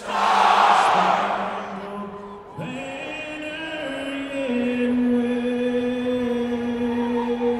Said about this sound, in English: So that moment comes and the pyro goes. And that's where I used up every one of my 32 bits. And the crowd kept chanting and the pyro kept going.